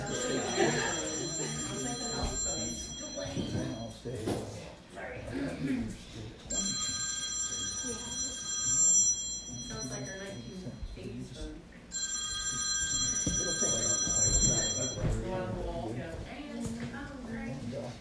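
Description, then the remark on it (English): A phone rings in two separate bursts of bright, electronic tones, a few seconds apart, while people keep talking underneath at a steady level. “Someone's phone.”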